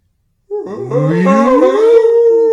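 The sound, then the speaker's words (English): A person voices a long, rising, moaning call in imitation of a whale song, a sustained tonal wail that swells and holds steady for about two seconds, loud with no other sounds. “I'm a whale. All right, yeah, that's what I was going to say. Wow, that's good. It's a good whale.”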